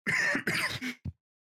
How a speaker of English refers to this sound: How am I still coughing?